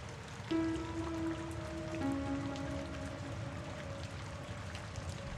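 Steady rain patters in a dense, even hiss throughout, with a low sustained humming tone layered underneath. No one speaks.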